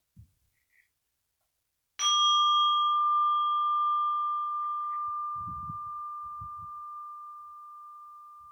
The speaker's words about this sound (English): And I will ring the bell to start our practice.